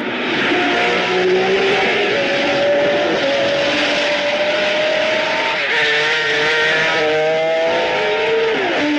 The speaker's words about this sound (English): And all of the sounds in the movie are not just car accurate, but accurate to which gear they were driving in. Wow. I have a note it's here. It's crazy. If you play any clips from the movie, it should just be loud car sounds.